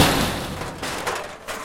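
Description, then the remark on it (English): A man delivers a rapid, dense barrage of about 90 heavy kicks that thud and slam against a door, loud, blurring into a near-continuous pounding with no voices. “Okay, I'm looking through the eye hole, and it looks like the man I instructed to kick the door has, in fact, broken both of his feet.”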